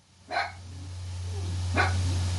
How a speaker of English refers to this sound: Y'all hear my dog? She. Hush!